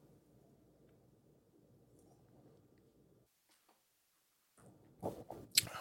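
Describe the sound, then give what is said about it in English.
A soft slurping sip of a crisp, clean wine near the end, preceded by a quiet low hum and a few faint clicks and shuffles; no one speaks. “I'm going to take a sip because it actually tastes really good.”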